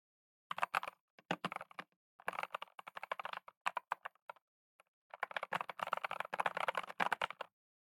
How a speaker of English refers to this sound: Anyways, I'm about to move the microphone towards the keyboard so that you can hear me type, and I'm gonna click away from all this so that I don't mess anything up while recording by accident. So here it goes.